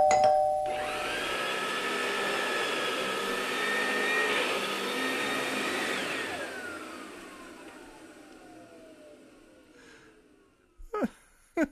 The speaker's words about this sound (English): The Colonel made that one. I love not only that the doorbell rings twice, which I think is just a great thing he threw in there, that why twice? Who cares? It rings twice